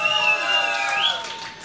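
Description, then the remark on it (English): A crowd at a party cheers and claps steadily for the party starter from Mexico, with sustained shouts and whoops riding over a dense wash of noise that eases off slightly toward the end. “Everybody, make some noise.”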